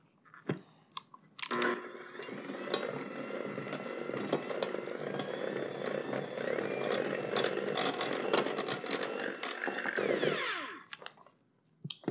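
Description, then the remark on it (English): An electric hand mixer whirs steadily for about nine seconds as it beats a glaze made with half a cup of powdered sugar, working out the sugar lumps, its motor hum steady and loud with faint ticks and scrapes, then switches off. “I want to make sure all the powdered sugar lumps are out, which I don't think they're quite out, so I'm going to beat it a little bit longer.”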